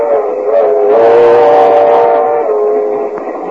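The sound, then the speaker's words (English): A moving passenger train approaching Kansas City rumbles steadily while its whistle sounds a long, loud chord for several seconds, fading slightly at the end. No one speaks. “George Burns in a compartment on a train approaching Kansas City.”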